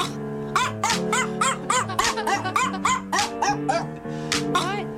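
Short, pitched barks from Gabe the Dog are chopped and tuned into a melody as a song cover, firing in quick rhythmic bursts over a steady synth bassline, loud and up front like a novelty song remix.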